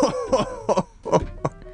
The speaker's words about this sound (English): You were coughing rather loudly.